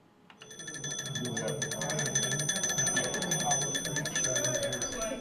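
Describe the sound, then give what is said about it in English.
Early 20th century telephones ring at a telephone history exhibit at the Juneau Douglas City Museum in Juneau, Alaska, on a Friday night. A little metal ball clanks rapidly in each bell, making a continuous, metallic clatter. It is steady and fairly loud, with a low murmur of voices underneath. “Sounds of early 20th century phones filled the Juneau Douglas City Museum on Friday night.”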